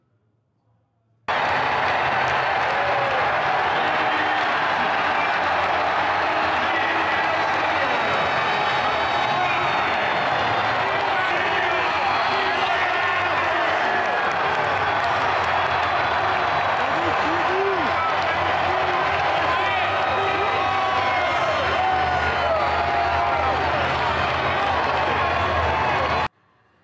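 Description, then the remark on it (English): A huge stadium crowd of Colorado Buffs fans in Boulder roars, cheers and applauds an entrance continuously for about 25 seconds, a dense, loud wall of sound with shouts and whistles rising above the steady clapping. “Let's play the entrance, which is just incredible.”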